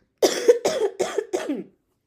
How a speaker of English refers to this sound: Hold on, I have coughs again, guys. I'm dying.